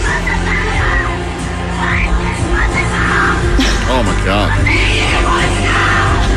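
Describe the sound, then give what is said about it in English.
A concertgoer shrieks along to loud live music, a high, wavering, piercing voice sliding up and down in pitch over a steady wash of band and crowd noise. “That shriek is painfully piercing.”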